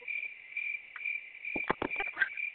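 Steady, high-pitched cricket chirping drones throughout, with a few soft, dull knocks or taps breaking in near the end. No one speaks.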